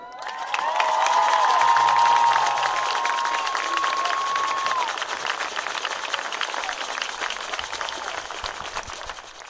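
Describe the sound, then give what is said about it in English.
A stadium crowd breaks into sustained applause for an on-field presentation honoring former Handley player Bradley Bozeman, whose number 78 is retired, a dense wash of clapping lasting several seconds, with high whistles and cheers rising early on before the clapping gradually thins out. “And you hear the round of applause in the background for this presentation for former Handley player and one of my favorite guys.”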